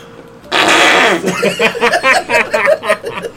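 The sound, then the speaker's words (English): A loud, wet fake fart made by squeezing licked hands lasts about half a second, then bursts of giggling laughter follow. “Dude, I'm so good at fake farts. The trick is licking your hands.”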